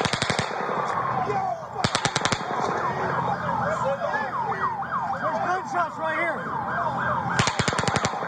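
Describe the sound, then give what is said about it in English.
Three short volleys of rapid automatic gunfire, around 22 bullets in all, crackle out from a gunman's fifth burst, one at the start, one shortly after, and one near the end, over a steady backdrop of wailing, overlapping sirens. “Then Paddock fires a fifth burst. It's around 22 bullets in three short volleys.”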